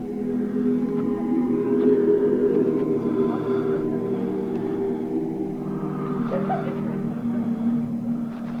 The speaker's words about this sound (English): And the sound guy actually talks about making all these different sound effects for the movie, and it's just him dragging various things across piano wires.